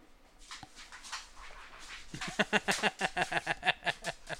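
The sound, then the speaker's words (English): A dog whimpers and lets out a rapid string of short, high yips in the second half, the bursts coming quickly and fairly loud over a quiet, slightly noisy background. “Dog does not quit.”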